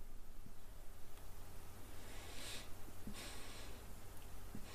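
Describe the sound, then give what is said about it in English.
A couple of short sniffs, as someone breathes in through the nose the scent of a burning scented product that is sparkly inside and smells like first aid. They are fairly soft over a low, steady background hum, with no talking. “Anyway, final sniff.”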